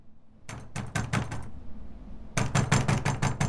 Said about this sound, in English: As the sun rises on the morning, Lord Macbeth, hands cleaned and now dressed in his nightshirt, opens the castle door to Lords Macduff and Ross, who have been knocking for the last half hour.